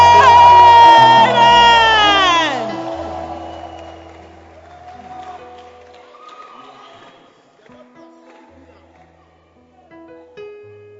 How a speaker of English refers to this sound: Can I hear a shout and a hand clap?